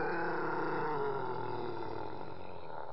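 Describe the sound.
A human growl, originally about a tenth as long, electronically processed into a deep, monstrous roar that rumbles loudly and steadily for about three seconds with no other sounds around it.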